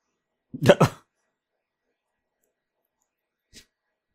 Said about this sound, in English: Dog.